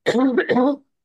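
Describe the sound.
A voice imitates a cough with two quick, throaty, voiced bursts run together in under a second, fairly loud, then silence.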